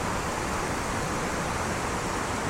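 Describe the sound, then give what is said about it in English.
A steady, dense roar of falling water, broad and unbroken, as the first of the larger waterfalls in a glen tumbles down into the rock pool below, with no voices over it. “Over to our right, the first of the larger waterfalls tumbles down into the rock pool below.”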